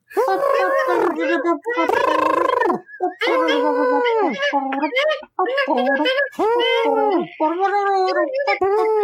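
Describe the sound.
Several people vocally imitate carnival noises: an elephant trumpeting, warbling calliope-style tunes and honking clown horns, a loud, overlapping jumble of sustained, wavering pitched voices with brief pauses between bursts.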